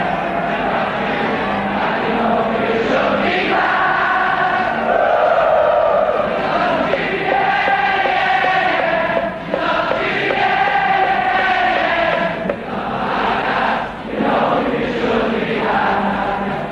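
A huge soccer crowd in a stadium sings a song together in a loud, sustained chant, massed voices blending into a reverberant roar that swells and dips briefly between phrases, with no single speaker standing out.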